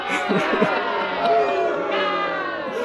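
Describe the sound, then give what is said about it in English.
A crowd cheering sound effect, a steady, subdued wash of many overlapping voices, with no big swells or peaks, sounding rather lacklustre and unenthusiastic throughout. “By the way, it's very lacklustre cheering that we've got, isn't it?”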